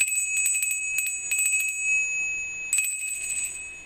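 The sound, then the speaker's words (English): A bright, high-pitched notification bell dings several times in quick succession, each chime ringing on with a shimmering metallic tail. It is clear, with no voices. “Remember to hit the notification bell.”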